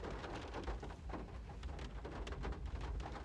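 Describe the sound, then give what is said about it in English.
Heavy rain hisses steadily while a deep, rolling rumble of thunder from big lightning strikes churns underneath, loud and continuous throughout, with no voices. “Because those are big lightning strikes.”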